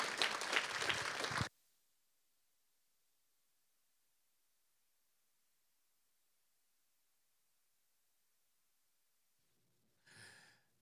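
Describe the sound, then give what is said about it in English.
An audience claps hands for the Lord in a loud, dense burst that stops abruptly after a second or two, followed by long silence and a brief, softer rustle near the end. “We clap your hands unto the Lord in this place.”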